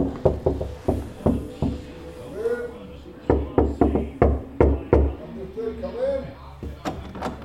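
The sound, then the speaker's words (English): Knuckles rap on the door of Room 18, on an internal corner with no windows, in several quick bursts of sharp, loud knocks, separated by short pauses while faint murmured voices are heard between the knocks. “Do you want to knock? I can't see that much. It's here. That's the door.”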